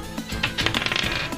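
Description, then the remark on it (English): A real die from an Extinction Curse dice set, rolled by hand instead of on Roll20, rattles and tumbles across a hard surface in a quick burst of clicking clatters lasting about a second before settling. “I'm going to roll real dice because roll 20 is being mean to me.”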